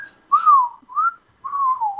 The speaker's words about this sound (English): The whistle song, nigga. Like, this whole album was amazing, yo.